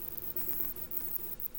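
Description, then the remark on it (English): A steady, low droning buzz with a slightly rough, pulsing texture, like an insect's wingbeat hum, heard alone and fairly quiet throughout. It is a bat's buzz mimicking a wasp or hornet. “And this is why, when these bats buzz, they really sound like wasps or hornets to us as well.”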